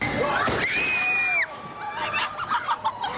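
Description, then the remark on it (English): Several friends scream in fright as a high golf shot at a Topgolf venue is struck by lightning in midair, one long, piercing shriek holding about a second before breaking off, followed by excited, overlapping shouts and chatter. “Yeah, you know, and if you watch the video while his friends are screaming with fear,”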